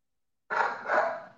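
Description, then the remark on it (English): A dog barks twice in quick succession, muffled, the second bark trailing off a little longer, with no one speaking. “Is my dog going super crazy, though?”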